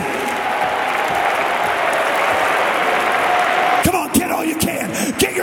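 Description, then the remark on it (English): An audience, standing on their feet, claps hands in a loud, dense, steady wash of applause that continues throughout, with a few sharper individual claps standing out near the end. “Stand to your feet and clap your hand.”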